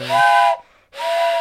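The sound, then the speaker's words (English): A steam train whistle sounds twice, loud, breathy and hissing, with steady high tones; a brief quiet gap separates the two blasts, and no one speaks. “Oh. Train's coming.”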